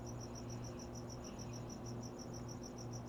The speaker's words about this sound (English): Yes, we get it, Mr. Cricket.